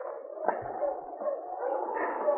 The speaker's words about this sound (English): They had only gone about a quarter of a mile when they heard dogs. Listen, they're a lot farther away than the cabin. Must be on the main trail to town.